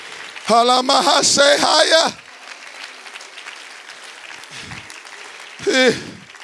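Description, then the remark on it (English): An audience claps their hands to the Lord in a burst of about a second and a half, with a loud voice calling out over it; after a quiet stretch, a brief second outburst follows. “Oh, can you clap your hands to the Lord again?”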